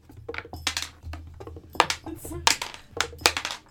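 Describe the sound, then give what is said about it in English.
Dice clatter across a hard tabletop in a quick, uneven run of sharp clicks and taps, rolled for a Guiding Bolt spell attack in a tabletop role-playing game, with a low steady hum and faint voices in the background. “It's a very gentle dice.”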